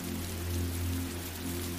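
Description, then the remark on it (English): Steady rain hisses evenly, with a constant low hum beneath it. No voices, just a continuous wash of water sound at moderate volume. “You close your eyes and listen to the rain,”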